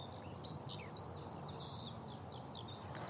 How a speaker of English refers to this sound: Here we go. Oh, there's Techno Bird.